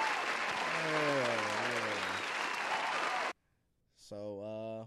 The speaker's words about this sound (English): So look at that little excellence. That's what I like to hear. Let's give her a clap. I like to hear stuff like Black that. Black excellence. That's what I'm talking about. Clap for that, people.